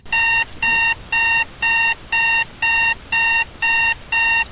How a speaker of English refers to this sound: Are you tired of the same boring Chinese-made alarm clock ordering you to get up every day? Do you suffer blunt force trauma to your skull, waking to your radio at 6 a.m.?